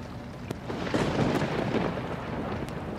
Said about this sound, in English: And still the rain falls. I have always liked the autumn rains.